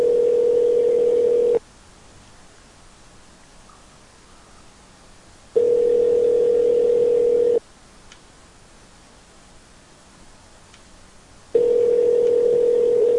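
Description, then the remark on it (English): A telephone ringback tone as a saved phone number is called: a steady, mid-pitched electronic hum sounding for about two seconds, then four seconds of silence, repeating three times with no one speaking. “Bob Vance, you're being rang.”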